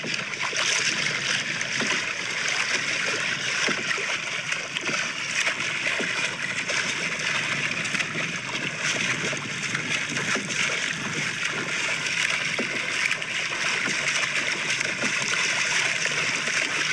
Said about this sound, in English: Sound of a man swimming in open water on Lake Michigan on a Friday headed into Labor Day weekend. Year of our Lord 2022.